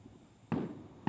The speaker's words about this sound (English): There's fucking fireworks going on over there. Don't know if you can see them or hear them.